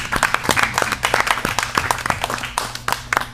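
A crowd claps steadily in a dense, continuous burst of applause, moderately loud, lasting the whole few seconds with no talking over it.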